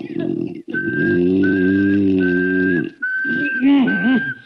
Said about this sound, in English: They say if you whistle in a monotone, maybe that'll work.